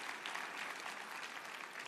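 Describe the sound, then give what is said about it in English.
A church crowd claps steadily after hearing about a mission offering, a dense wash of many hands applauding at an even, sustained level with no voices standing out. “Give yourself a hand.”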